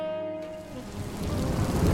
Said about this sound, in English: Ah, seriously? Rain? I just started monologuing and now the bottom falls out? I guess this is what I get for recording this whole thing outside.